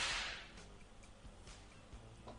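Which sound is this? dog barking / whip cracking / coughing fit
whip cracking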